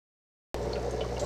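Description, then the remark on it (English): After half a second of silence, two cups of tank water start pouring into a container in a steady, continuous rush with a low hum underneath, and it keeps going to the end. No one speaks. “And now that that's in there, we're going to add in our 2 cups of tank water to met level.”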